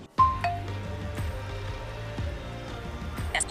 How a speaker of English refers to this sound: Looks like a body of water running through a grassy field.